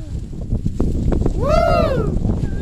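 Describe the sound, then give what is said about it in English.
Steady wind buffets the microphone outdoors, a loud low rumble that runs through the whole moment, with a brief rising-and-falling tonal cry breaking through near the middle. “And it's windy.”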